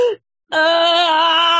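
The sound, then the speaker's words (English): A voice imitates a child's distress: a brief sharp gasp, a moment of silence, then a loud, sustained wail held steadily to the end, without any talking. “That short gasps and then wail.”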